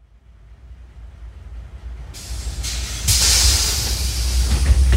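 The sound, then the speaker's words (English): A large vehicle's engine rumbles and grows steadily louder, then sharp bursts of air hiss break in twice and linger, like a city bus releasing its air brakes; a 733 line bus heading west on Venice Boulevard in the early afternoon, spring 2017. “It's spring 2017, and I'm on the 733 bus line heading west on Venice Boulevard.”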